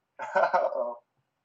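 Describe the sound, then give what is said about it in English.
A single short, throaty cough bursts out, lasting under a second before silence returns. “Oh God, I started coughing too as soon as you got here.”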